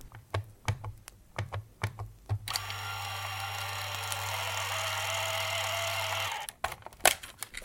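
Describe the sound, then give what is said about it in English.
A Dymo label maker prints a label: several sharp key clicks, then a steady whirring motor hum for about four seconds, followed by a few more clicks. No one speaks. “I'm trying to be more organised this year, so everything is getting labelled with the Dymo.”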